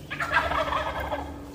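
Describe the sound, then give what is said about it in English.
A flock of wild turkeys near a house gobbles in a rapid, rattling burst, a single warbling call that rolls on for over a second at moderate volume, with no talking. The flock has four females and two males, and the males are in full display. “I'm watching a flock of wild turkeys walk around near my house.”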